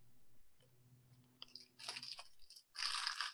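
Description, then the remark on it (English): Someone bites into a chocolate Ding Dong snack cake and chews, with moist, crunchy bursts that grow louder toward the end, following a soft low hum at the start. “Ready for some ding-dong?”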